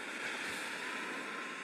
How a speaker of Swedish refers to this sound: Det fortsätter genom att vara det här ljudet av vind bara sen i 45 sekunder.